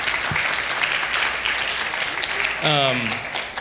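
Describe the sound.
An audience applauds a newly announced worship director with steady, dense clapping throughout, and a single voice rises briefly above the applause toward the end.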